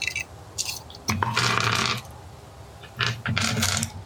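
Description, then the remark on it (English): Two bursts of clattering as a handful of small four-sided (d4) dice is shaken and rolled all at once across a surface, each rattle lasting about a second, fairly loud with no talking. “Now I can roll my D4s all at the same time.”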